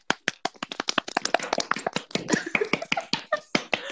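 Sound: people clapping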